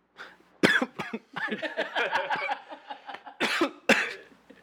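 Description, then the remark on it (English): Several loud, harsh coughs right up close to the microphone, an early burst and then two more in quick succession near the end, with raspy, strained vocal sounds between them. “please cough right into the microphone.”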